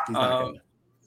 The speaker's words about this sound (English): My dog's not going to stop barking.